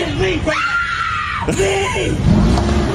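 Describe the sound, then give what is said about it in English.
A loud, sustained tire screech as a woman peels away in her car, a high whining squeal lasting about a second, followed by rough engine and road noise with shouting voices mixed in. “And she screeches away.”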